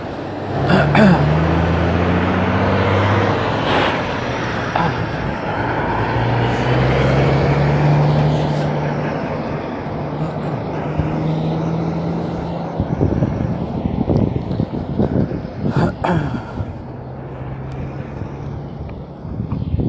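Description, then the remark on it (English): Street traffic with a big Freightliner truck idling as it waits for a pedestrian to walk by: a steady low engine drone with wavering hum tones runs throughout, under a constant wash of road noise and a few brief sharp clatters. “But yeah, I was holding up traffic, and there was like a big old truck Freightliner that was just waiting.”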